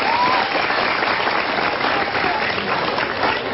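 A crowd claps steadily in dense, even applause for a boy learning to lead prayer as imam, with a few faint whistles or cheers rising briefly above the clapping.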